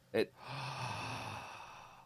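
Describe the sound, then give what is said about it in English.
A short, sharp intake of breath through the mouth is followed by a long, steady airy exhale lasting nearly two seconds, clear with no talking. “You should breathe through your mouth. That's superior oxygen. Look how much oxygen you just got.”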